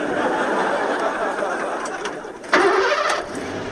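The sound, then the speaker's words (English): A car engine cranks over with a steady grinding whir, then catches with a sudden louder surge and settles into a rumbling idle. “Now turn the key and let's cruise.”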